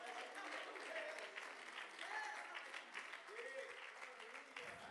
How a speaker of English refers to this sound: Oh, let's clap our hands and thank God today. Woo! Hallelujah.